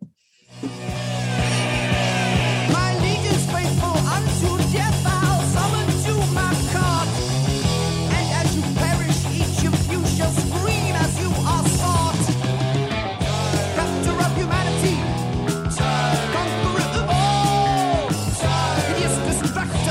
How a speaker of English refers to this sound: It's a 12-second scream. Oh, and a beautiful one at that.